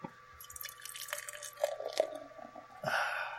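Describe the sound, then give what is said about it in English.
Cross Fever Amber Ale from Epic Brewing, a 5.1% alcohol amber beer, pours into a glass, a steady gurgling trickle with small splashes that swells into a louder fizzing rush near the end, with no talking. “And the pour.”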